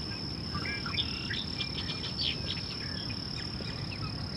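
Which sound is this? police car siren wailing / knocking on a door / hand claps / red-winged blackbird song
red-winged blackbird song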